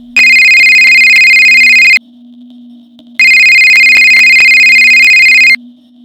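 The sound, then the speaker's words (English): A mobile phone ringtone rings in two long, loud bursts with a pause between, a bright electronic tone over a steady low hum, no voices present. “Suddenly, your phone goes off.”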